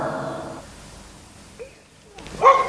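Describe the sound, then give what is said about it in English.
A dog named Bill gives one short, sharp bark near the end, after a fainter whiny, drawn-out sound at the start and a quiet stretch. No one speaks. “What you barking at?”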